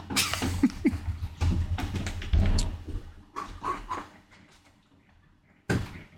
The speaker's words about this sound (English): started pumping the door to get air in, and that became the door dance